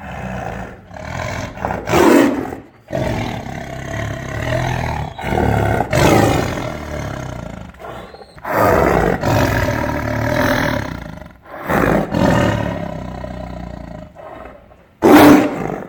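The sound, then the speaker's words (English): A Bengal tiger roars repeatedly and loudly, with deep rumbling growls rising into bursts of full-throated roaring across several separate calls. “So do you want to hear a Bengal tiger roar?”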